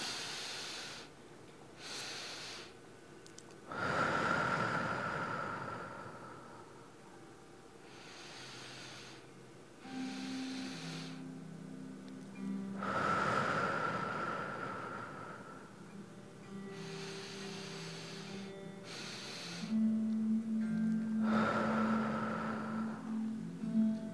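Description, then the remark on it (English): Three slow, deep breaths during a guided breathing exercise, each a long whooshing exhale rising and fading, spaced evenly with quieter inhales between, steady with no talking. “Let's breathe for a moment together.”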